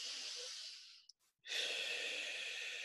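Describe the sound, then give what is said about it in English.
A long, deep breath drawn in through the nose with a soft airy hiss, a brief pause, then a steady breathy exhale out through the mouth, fairly quiet, with no talking. “A nice big deep breath in through your nose and out through your mouth.”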